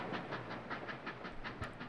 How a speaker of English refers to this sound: You're riding aboard one of 4 genuine steam-powered trains of the Disneyland Railroad.